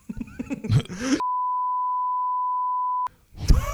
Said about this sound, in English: Oh, no, I can't. I'll beep it like we did last time.